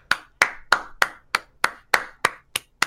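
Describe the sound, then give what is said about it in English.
Ten sharp hand claps in a steady, even rhythm, fairly loud, each one snapping crisply and decaying quickly with no voices present. “Clap it up.”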